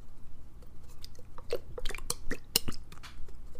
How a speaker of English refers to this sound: The priest now sprinkles a little holy water, and I do have a little holy water too.